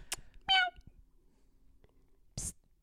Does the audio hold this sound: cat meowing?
yes